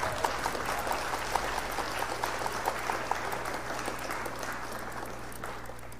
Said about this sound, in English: Let me get a clap for all of us. How about that?